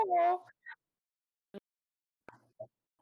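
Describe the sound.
A person gives a short meow in imitation of a cat, followed by a few soft, scattered clicks and taps in otherwise quiet surroundings.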